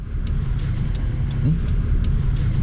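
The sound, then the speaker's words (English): Steady low rumble of around 200 to 300 cars driving on a road in Racine in a protest caravan headed towards a plant in solidarity, with a faint, regular ticking repeating about three times a second throughout. “I would say there's around 200 to 300 cars all headed towards the plant to show solidarity.”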